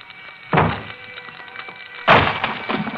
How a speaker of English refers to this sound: Inside a small, cheaply furnished apartment in a shabby, old-fashioned building glows the more sinister light of fast-spreading flame. Outside its locked door, firemen swing their axes at...